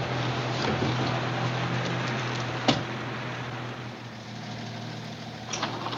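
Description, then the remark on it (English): A tow truck engine idles steadily with a low, even rumble as the truck is pulled into a shed, interrupted once by a sharp metallic clunk partway through, and a few faint knocks near the end. “The guy gets out of the tow truck, pulls it into a shed of some kind.”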